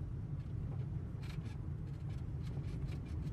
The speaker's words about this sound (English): There's cars, like. This car is fun, the bits. This car is bound for glory.